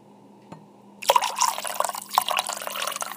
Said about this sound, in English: but I am going to pour, wait, this could be our outro. Just to pour.